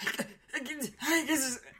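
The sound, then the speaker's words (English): A person imitates the heavy panting of someone dancing inside a full mask, pushing out a few quick, breathy, partly voiced gasps in a rough rhythm, fairly loud. “Because can you hear them, like, breathing heavily? Because if you were dancing inside of a full mask, you'd be like...”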